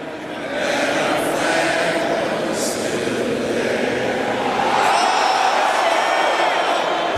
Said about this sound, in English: They're yelling something. I think they just got ahead of it. Either that or do you think they showed something that we can't see on the Jumbotron or something that created a roar or something? Because it sounds like they said the same thing.